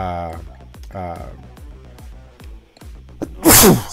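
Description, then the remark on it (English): A single loud sneeze bursts out near the end, a sharp noisy explosion following a stretch of voiced talk; a brief spoken apology is heard too. “Bless you.”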